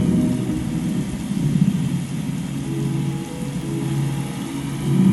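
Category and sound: nature, rain falling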